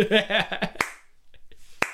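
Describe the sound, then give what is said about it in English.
Two sharp, slow hand claps land about a second apart, crisp, in the UN, following a brief burst of voice at the start. “And then in the UN, like, we just hear this clapping, just...”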